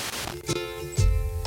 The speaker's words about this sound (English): Okay. Turn that on. There's the static. Starting in the far left. 88.1 for those of you keeping track at home.